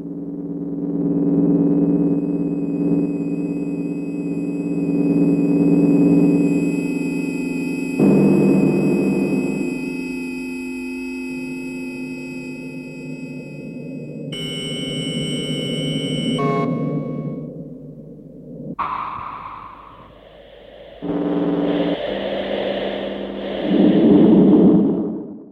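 Electronic tape music built from layered sine tones, with sustained low drones, abrupt cuts, a cluster of high pure tones and shifting mid-range blips, no voices.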